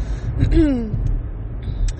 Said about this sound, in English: I'm driving a rental car right now.